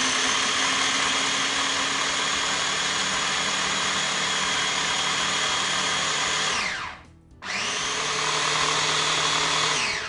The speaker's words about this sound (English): I'm gonna turn on the processor, and as it's running, I'm gonna pour in my canola oil in a steady stream so that I emulsify the dressing.